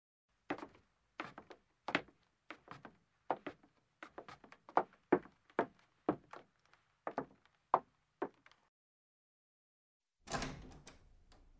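A door being opened slowly: a string of sharp wooden clicks and creaks at an uneven pace, a brief pause, then a rougher scraping rush as it swings. No voices.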